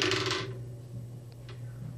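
Dice clatter across a hard table in a bright rattling burst, followed by a couple of faint clicks as they settle, with a steady low hum underneath.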